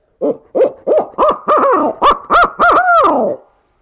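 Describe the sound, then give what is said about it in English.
An owl hooter call blown to make wild turkeys gobble: a loud, rhythmic series of about eight hooting notes that climb in pitch and end in a longer, drawn-out hoot, with no talking. “I usually have really good success in getting the gobble to an owl hooter.”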